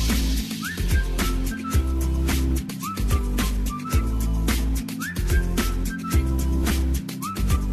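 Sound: whistle being blown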